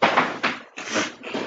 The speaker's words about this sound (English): That sounded worse than it was. He didn't fall and hit his head or anything. He just knocked over a charging block I had on the floor.